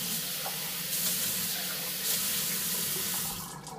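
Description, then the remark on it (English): A kitchen faucet runs steadily, a broad continuous hiss of water splashing into a sink, easing off slightly near the end with no voices. “Sorry if you hear the water running, give me 1 second.”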